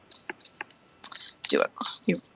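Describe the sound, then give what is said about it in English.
Crisp clicking and rustling as a deck of Dolphin Mermaid oracle cards is shuffled before three cards are pulled for the week ahead, coming in quick irregular bursts with short pauses, a voice faintly murmuring underneath. “Okay, and I am going to use my Dolphin Mermaid cards today, and I'm going to pull three cards for the week ahead. I'll shuffle them now as we speak.”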